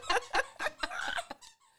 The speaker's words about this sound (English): Yeah, that's a squeaky toy. Yeah. Everything squeaks.